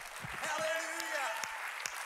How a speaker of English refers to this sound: One more time, let's put our hands together and give God a hand clap of praise.